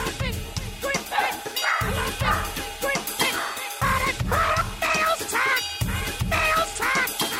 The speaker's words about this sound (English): What's the dog's name? Ollie. Ollie's just visiting till Wednesday. And Ollie's a very good watchdog.